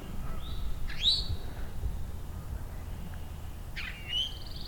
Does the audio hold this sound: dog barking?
no